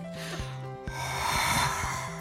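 Heavy breathing into a microphone for a recorded take, take 30, with rough snorting and rubbing noises over a low hum, a sharp click near the middle, then more airy, wheezy breaths.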